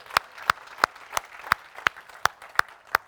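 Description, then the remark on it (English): A church audience claps together in steady unison as a clap offering to God, sharp beats landing about three times a second over a soft bed of scattered applause, with no voices. “Now give him a big clap offering and thank him.”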